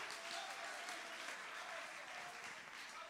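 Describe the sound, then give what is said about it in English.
A church audience claps hands together during a sermon in a steady, dense wash of applause that holds at an even loudness for a few seconds, with no speech over it. “Clap your hands if you believe what I'm preaching right.”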